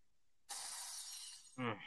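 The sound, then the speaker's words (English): A car windshield is smashed with a sledgehammer: a sudden loud crash of shattering glass that crackles on for about a second, then a second heavy burst with a deeper edge. “Next time on Deadpool It Yourself, replacing a windshield that's been hit by an idiot's sledgehammer.”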